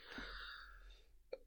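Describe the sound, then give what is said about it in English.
A breathy, raspy cough from a tickle in the throat trails off over about a second, followed by a short, sharp second cough; quiet, with no talking. “Again, I apologize for this cough, this tickle in my throat.”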